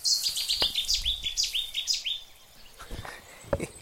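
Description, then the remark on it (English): A common whitethroat, a small warbler, delivers a quick, scratchy warbling phrase of rapid chirpy notes lasting about two seconds, clear, followed by quieter rustling and faint background noise. “Got a white throat here.”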